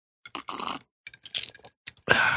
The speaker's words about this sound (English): I've got a little glass here. There's some bourbon and water going down. They'll be alarmed if you hear some ice cubes.